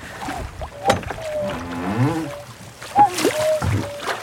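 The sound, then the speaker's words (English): A cuckoo repeats its two-note falling call a couple of times, the clear hooting tones ringing out over splashing, paddling water sounds and a brief murmur of voice. “It's cuckoo again. Oh, very loudly, listen.”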